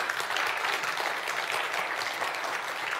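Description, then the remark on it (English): A church audience applauds the unsung heroes working in the booth, a steady, dense wash of many hands clapping at even loudness throughout, with no clear voices above it. “See, good leadership principles tell you to draw attention to the unsung heroes and everybody claps, but I'm more passive aggressive.”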